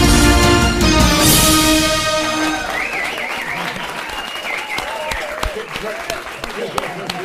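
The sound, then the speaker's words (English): Loud, sustained applause from an audience with cheering and whistles, dense clapping that stays strong throughout, with excited voices shouting in the crowd, after a band's live gig at the Melting Pot venue. “After the sort of rapturous applause.”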